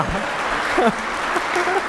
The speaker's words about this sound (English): I like to walk up while they're still clapping for her because it makes me feel like you're clapping for me.